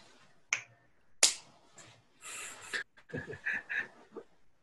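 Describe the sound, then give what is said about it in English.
Two crisp finger snaps about a second apart, followed by a stretch of soft, breathy panting-like sounds in otherwise quiet surroundings. “And when you feel comfortable, you can open your eyes and snap your fingers.”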